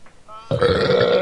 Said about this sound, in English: Oh, pardon me, huh? Pardon me, huh? Yeah, right? That was a big burp.